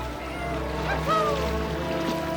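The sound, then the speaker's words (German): Eight canoes glide one behind another along a river in the afternoon sun, with a steady wash of moving water and soft paddle splashes, and a few brief higher calls rise faintly over the continuous flow. “8 Kanus glitten hintereinander unter der Nachmittagssonne auf dem Fluss.”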